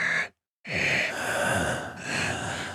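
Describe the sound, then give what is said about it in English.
Someone imitates heavy breathing: a short, loud breath, a brief pause, then a long, rasping breath drawn out over a couple of seconds, with no talking. “He's got the type of heavy breathing that implies that he's got smelly breath.”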